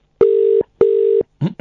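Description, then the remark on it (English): A phone line's ringback tone sounds as two short, steady electronic buzzes in quick succession, clear, as a quick phone call is made to Local Treasures, followed by a voice starting to speak right after. “Can I just make a quick phone call while you guys are here?”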